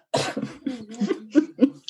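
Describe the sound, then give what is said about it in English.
A drawn-out, throaty yawn followed by a low, gurgling burp, heard as a string of rough voiced bursts with no talking, ending in a short breathy hiss. “That was a good blooper. Just the yawn and the burp.”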